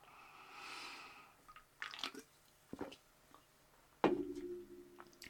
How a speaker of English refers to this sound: Taking a sip of my White Claw.